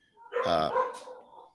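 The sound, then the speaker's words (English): A single loud bark from one of the speaker's pet dogs, with a harmonic edge, trailing off into a softer whine-like tail over about a second, with no talking. “Hey, this dog. Time it's my dogs.”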